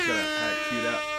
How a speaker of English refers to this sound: I'm gonna hit an air horn because we can do it now.